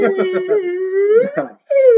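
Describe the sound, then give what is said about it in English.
A person vocally imitates a whale call with long, drawn-out moaning tones that slide up and down, broken by a brief pause before a final wailing note, loud. “It's fucking whale.”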